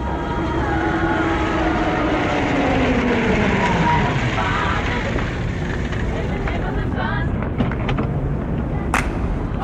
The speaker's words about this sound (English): Yes, there's like not city noise, but transportation noise. Yeah, like street noise. Yeah, you can hear some car door open and shut too.